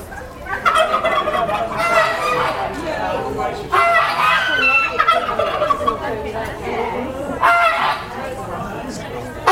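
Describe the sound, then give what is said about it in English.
A dense, continuous chorus of poultry at a poultry show, geese honking, ducks quacking and chickens clucking, overlapping loudly, with sharp bursts rising out of the steady din. “Silver apple yards, there's geese, ducks, chickens, merrows, that's it.”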